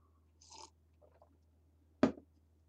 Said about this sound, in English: Let me get a sip real quick.